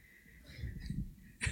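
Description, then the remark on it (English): A single sudden sneeze bursts out at the very end after a stretch of quiet, murmuring room noise, sharp and fairly loud against the hushed background. “Bless you.”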